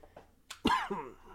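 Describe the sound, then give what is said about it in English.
A single harsh, throaty cough from a person who is feeling unwell bursts out into the mic, preceded by a short breathy exhale and followed by a rasping, voiced tail as the throat clears. “Sorry for the coughing.”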